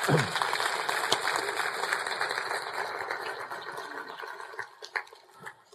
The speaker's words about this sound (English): If you're going to clap, give the Lord a great big hand of praise.